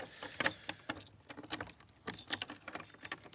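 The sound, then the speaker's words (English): Footsteps of a person taking a short walk, crunching through dry leaves: a string of crisp, crackling bursts at an irregular walking pace, fairly quiet, with no voices. “You can probably hear the crunching of the leaves.”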